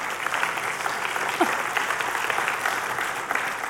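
An audience claps steadily, a dense, even wash of many hands sustained at a fairly constant level, with a brief vocal whoop rising out of the applause partway through.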